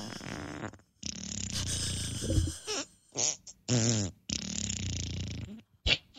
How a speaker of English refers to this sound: Try asking me to fart 17 times in a row. Okay. Or say random. Fart 17 times in a row. 17 farts coming your way.